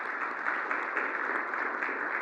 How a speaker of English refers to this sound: So we want to thank the ladies for that and give them a round of applause too, yeah.